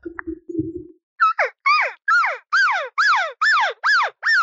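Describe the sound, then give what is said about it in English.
A short low grunt, then a rapid series of about eight high, squealing cow elk calls, each sliding sharply downward in pitch, made by a person imitating a cow elk accepting a calling bull's invite and going to him. “So now I'm going to go to him with the sound that a cow will make as she accepts the invite.”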